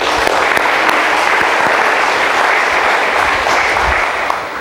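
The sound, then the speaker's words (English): Sustained applause from an audience, a dense, steady wash of many hands clapping at once, loud and even throughout with no voices standing out. “Yeah, we can clap.”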